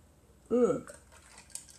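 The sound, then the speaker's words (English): A short, loud slurping sip of tea with a rising, whistly tone, followed by faint clinks of a cup and quiet rustling. “Taking a sip of tea.”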